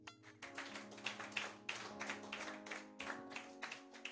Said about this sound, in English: Amen. Give the Lord a clap.